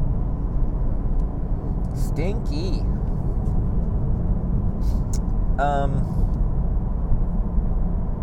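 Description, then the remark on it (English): The diesel engine of a heavily smoking hydro truck, burning unburnt diesel, drones with a low, steady rumble for the whole stretch, loud and unbroken, while a person speaks a couple of brief words over it. “There's a hydro truck that's smoking like crazy. Like smoke coming out of the, either, oh, it's like burnt, unburnt diesel, I think.”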